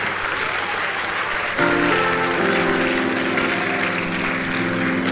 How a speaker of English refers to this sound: Get up. Stand up. You are supposed to clap when they finish preaching nicely.